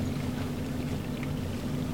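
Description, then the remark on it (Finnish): A boat motor runs steadily, a continuous low droning hum with a rough, noisy wash over it. The level stays constant throughout, and no one speaks. “Niin mä voin koittaa, että mä sammutan kyljellä moottorin, että vaan sitten kun käynnistää uudestaan, niin saattaa säikä.”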